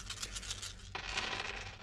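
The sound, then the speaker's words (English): A set of new, fancy dice clatter and tumble across a hard surface during a game, in a quick series of bright, rattling clicks, continuing for under two seconds with a steady low hum beneath and no voices. “I thought these new fancy dice would do better.”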